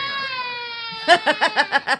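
A baby's cry, like a sound effect: a long, steady, high wail, then about six short, rhythmic sobbing bursts in quick succession, fairly loud and with no talking over it.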